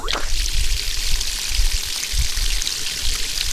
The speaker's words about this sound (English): We're drawing water from a well that was hand dug more than a century ago.